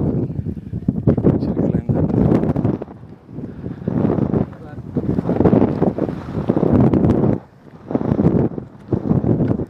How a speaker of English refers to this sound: Oh, there's a river flowing.